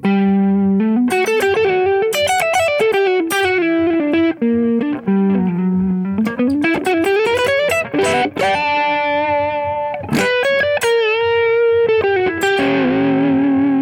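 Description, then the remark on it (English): An electric guitar on its neck pickup plays a loud, continuous run of melodic notes with slides and bends, slightly overdriven, each attack carrying a rounded cluck, with no voices. “Like I said, has that cluck on the front of the neck pickup.”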